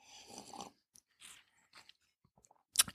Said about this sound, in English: Let me take a sip here.